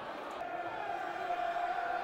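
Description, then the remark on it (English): The Millwall crowd at a football match against Luton roars and chants, getting behind the Lions in a steady, continuous wash of voices, holding an even loudness for about two seconds with no single voice standing out. “Mill crowd trying to get behind the Lions.”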